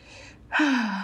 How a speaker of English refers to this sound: Yeah, I could see you and hear your breathing get shallow.